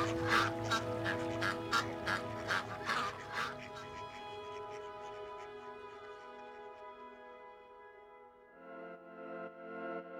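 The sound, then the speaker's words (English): A rapid run of about eight loud duck quacks fills the first few seconds, layered over sustained musical tones that carry on alone afterward. “I have since sold a few of their descendants to other duck lovers in Southland.”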